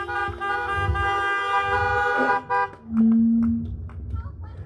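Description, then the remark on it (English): Several car horns honk together in a long, sustained blare, followed by a shorter, lower-pitched honk and a few scattered toots, fairly loud against faint outdoor background noise. “Can I get a honk to that?”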